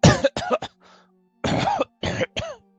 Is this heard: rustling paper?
no